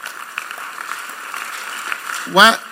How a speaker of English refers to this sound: Why are they clapping? Is there a revelation? Is there something? Is there a revelation?